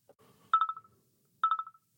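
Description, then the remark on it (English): A telephone rings twice, each ring a short, bright trilling burst about a second apart, clear, with a faint rustle just before the first ring and no voices. “So let's get on the phone with Chad and find out what his story is.”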